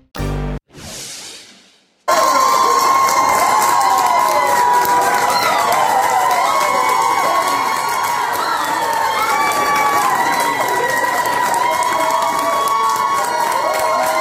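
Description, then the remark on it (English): After a short burst of unrelated sound and a brief pause, a large crowd outside the doors of Nebraska's legislature erupts in loud, sustained cheering and shouting after a bill to ban most abortions in the state failed, with many high voices whooping over a dense roar for about twelve seconds. “That was the scene outside the doors of Nebraska's legislature yesterday after a bill failed that would ban most abortions in the state.”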